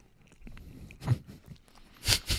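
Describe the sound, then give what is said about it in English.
Crunchy chewing on a buttered grilled cheese and banana sandwich, with a few distinct crisp bites and soft mouth sounds between them, loudest near the end. No talking. “I mean, I was like, oh, because it still had that crunch, but all right.”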